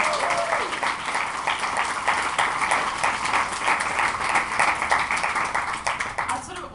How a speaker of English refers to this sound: So yeah, maybe let's give a little clap to those two.